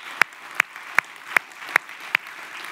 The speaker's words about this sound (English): Don't be a reluctant clapper. Come on, if you want to applaud. We bring it at City Life. We like to applaud.